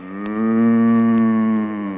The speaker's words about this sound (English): 100 million moo cows can't be wrong.